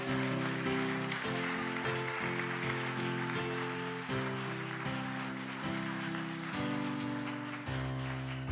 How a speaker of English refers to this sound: Amen. Give God a strong hand clap.